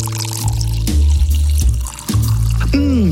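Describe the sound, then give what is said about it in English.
Inkspot St. Wrytham Lager, a Munich-style, London-made, unfiltered lager, being poured into a glass, a steady gurgling stream with glugs and fizz for a few seconds, the pitch rising as the glass fills near the end. “You know, normally this time of day, or well, usually after 10:30 in the morning, I like to turn to Inkspot's St. Wrytham Lager.”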